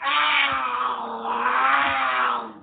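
A cougar lets out one long, loud scream, a harsh, wailing cry held steady for a couple of seconds before cutting off, with no other noise around it.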